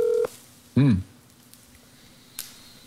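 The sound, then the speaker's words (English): A short, steady electronic phone tone sounds as a phone call is placed, followed by a brief warbling electronic blip and later a faint click, with quiet background otherwise. “Are we calling? Okay, we are calling.”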